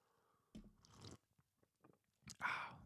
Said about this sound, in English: Let me just take a sip of my delicious Earl Grey tea.